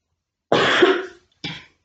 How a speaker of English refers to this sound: Seems like the more I talk, the more I cough. So just bear with me, please, as I said. My throat's killing me, man.